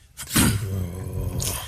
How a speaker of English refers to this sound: Is that a growl?